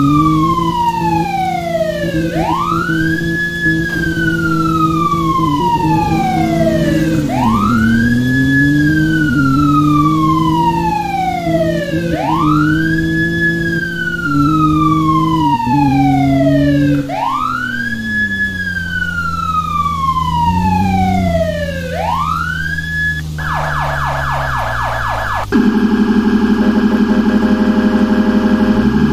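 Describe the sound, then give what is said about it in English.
A loud emergency vehicle siren in a driving video game wails in repeated rising and falling sweeps over a deep rumbler tone, then switches to a rapid yelp and a steady tone near the end. “They have the rumbler siren.”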